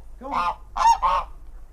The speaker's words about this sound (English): The geese don't play a very large part in our activities.